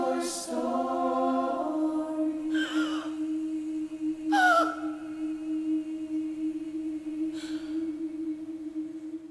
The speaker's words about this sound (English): that last gasp. It's this heart-stopping moment in Broadway history.